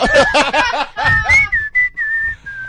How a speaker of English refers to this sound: And I whistle to the music I'm listening to. So they must know. So it's not like yeah. And it's always Afrikaans pop.